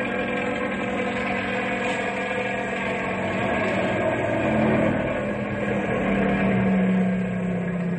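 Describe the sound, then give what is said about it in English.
A Ranger snow car's engine drones steadily as it travels down a highway, like a small plane flying low, a continuous buzzing roar with a constant pitch that swells slightly midway. No one speaks. “Sounds like a small plane flying low. Well, it is a small plane.”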